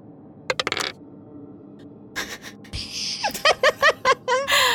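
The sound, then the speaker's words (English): Dice clatter across a hard table in several quick bursts of sharp, rapid clicks and rattles, fairly loud, with no one speaking, as a player rolls an intelligence saving throw in a tabletop game. “I have a good plus on intelligence, but I rolled a 3. Ooh, get rid of that dice.”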